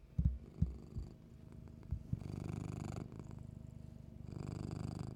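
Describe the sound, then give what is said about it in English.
A cat named Mochi purrs into the microphone, a low, steady rumbling that swells and continues, preceded by a few soft thumps and rustles. “And this is Mochi. Say hi, Mochi.”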